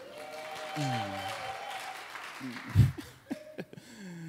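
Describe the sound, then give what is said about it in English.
A crowd applauds in a steady wash of clapping, with scattered whoops and cheering voices rising over it and a sharp thump partway through. “Y'all can clap for me if you want to.”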